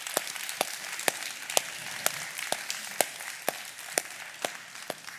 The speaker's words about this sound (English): Why don't we give Suzanne a hand clap and invite her up?